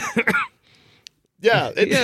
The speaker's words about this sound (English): Thought you were going to say more, but you just coughed and then just went silent.